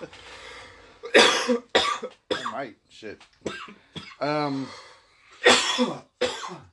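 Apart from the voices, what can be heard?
person coughing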